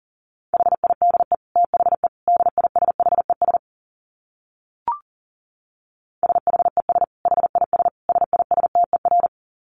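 Fast Morse code at 40 words per minute: a steady, mid-pitched tone keyed in rapid dots and dashes, sent in two runs separated by a short silence broken by a single faint click.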